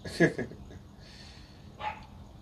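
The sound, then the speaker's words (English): A dog barks a couple of times, a sharp yelp followed by a second fainter bark a moment later, over a low background hum. “So my dog is barking for whatever apparent reason.”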